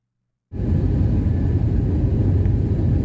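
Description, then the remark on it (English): After a brief silence, a steady, loud airplane cabin roar begins abruptly and holds constant, a dense low rumble with a broad hiss above it and no voices, recorded by a passenger aboard a plane apparently near San Francisco airport, over the San Mateo Hayward Bridge. “This footage was taken by a passenger on another plane, apparently near the San Francisco airport.”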